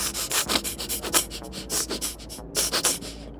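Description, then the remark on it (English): Big plastic bags of snack foods are torn and crinkled open, a steady run of sharp rustling, ripping bursts for several seconds with no one talking. “In his arms with like big plastic bags of snack foods that he's ripping into.”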